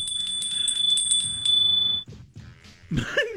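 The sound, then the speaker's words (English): A small bell rings rapidly and continuously for about two seconds, bright and tinkling, then stops; a brief burst of other noise follows near the end. “A little ding-dong, ding-a-ling-a-ling there.”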